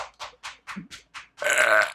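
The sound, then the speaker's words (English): A quick series of six soft, evenly spaced pats or puffs leads into one loud, drawn-out, gurgling burp that fills the last half second. “This is not a good burping.”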